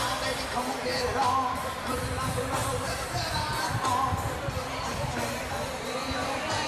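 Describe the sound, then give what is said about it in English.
A large outdoor crowd files into a plaza, murmuring steadily, with overlapping voices blending into a dense, continuous hubbub and a few brighter voices now and then rising above the wash. “Much of the crowd continues to file in here to the plaza because they know what's next.”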